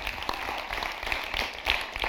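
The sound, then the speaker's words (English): A church crowd claps together, applauding Awakening Church, in a steady, dense patter of many overlapping hand claps, holding an even loudness for about two seconds with a brief swell near the end. “Because if you got nothing, I don't know if you're going to have anything else to clap at the entire time, so you might as well go big now.”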